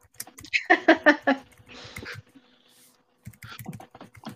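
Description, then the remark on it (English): Rapid clicking of keys on a computer keyboard as someone types into a chat, in quick bursts with brief pauses, joined by a short breathy noise and some faint vocal sounds. “He's typing something smart aleck.”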